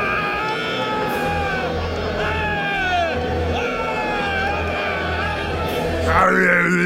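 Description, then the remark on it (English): A man yells loudly and almost without pause on the entrance ramp at a wrestling event, his strained voice rising and falling over a steady crowd roar, growing louder near the end. “yelling on the ramp, just non-stop.”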